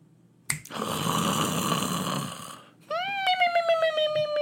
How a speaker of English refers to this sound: That is the most exaggerating snoring I think I've ever heard in my life.